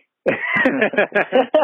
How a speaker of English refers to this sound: I fucking coughed. Well, one little fucking cough.